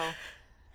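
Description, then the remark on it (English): A single sharp, breathy sneeze, a quick burst of air that fades over a fraction of a second before another sharp intake of breath. No talking. “Oh, I have to sneeze.”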